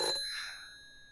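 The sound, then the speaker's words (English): A single bright ring of a kitchen telephone bell, struck once and left to fade out with a shimmering metallic decay. Fairly quiet, with no voices. “Annabelle is never one to walk away from a ringing phone.”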